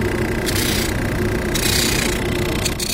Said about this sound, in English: Those parts get sanded, often a couple times with different sanders. The first is a rotating belt sander. Now watch, that's going to spin, so don't get too close to it. Then this is sanding. What we're sanding here.